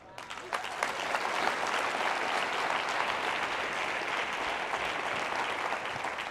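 Sustained audience applause, a dense, steady wash of many hands clapping that swells in the first second and then holds at an even, fairly loud level throughout, with no voices standing out.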